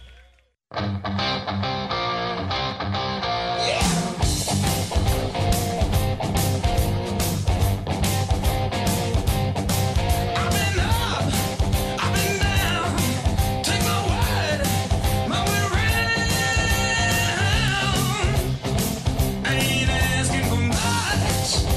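A blues rock song by a three-piece band from Texas opens with a brief sustained guitar chord, then the full band crashes in with a driving drum beat and gritty guitars, staying loud and steady throughout.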